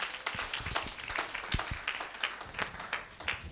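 An audience claps in a dense, steady patter of many overlapping hand claps, moderately loud and sustained throughout, with no voices standing out.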